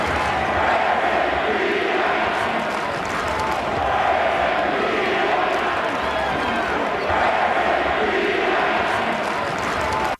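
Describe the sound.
A packed arena crowd of Denver Nuggets fans chants "Where's Embiid at?" in unison after Joel Embiid is ruled out of the game. The loud, rhythmic chant rises and falls in repeated swells over a constant roar of voices.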